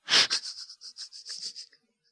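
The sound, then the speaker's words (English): A voice imitates the pitch bend knob of a Casio keyboard: a loud breathy burst, then a quick run of about eight hissy, wavering pulses that taper off into silence. “There was a knob on the left side called bend.”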